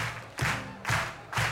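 An audience at a live music performance claps along in unison, three loud, sharp beats at a steady, even tempo, each clap a broad burst over a constant low background wash.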